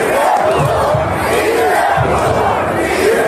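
A large crowd chants "Yes, we could" loudly in unison after Morales resigned, many voices rising and falling together in a steady rhythmic cadence, with a dense roar of voices filling the background throughout.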